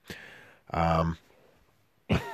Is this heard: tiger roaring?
no